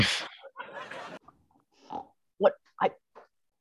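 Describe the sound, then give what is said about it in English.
A man standing on a table voices a pig impression: a broad snorting burst, then a series of short, grunting oinks in an uneven rhythm, loud. “immediately knew which animal he was going to imitate, a pig.”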